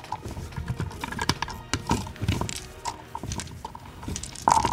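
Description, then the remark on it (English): A rapid, uneven clatter of many small hard objects, like a big handful of dice tumbling and rattling across a table, steady for several seconds. “Oh, that was a lot of dice.”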